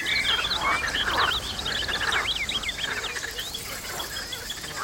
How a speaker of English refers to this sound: Ooh, and check out these frogs calling loudly.